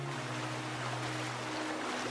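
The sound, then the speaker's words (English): Water laps and washes steadily around a drifting ice floe in a large body of water while snow lightly falls, a continuous soft ambience with a faint low hum beneath it and no voices. “finds herself on an ice float, drifting in a large body of water.”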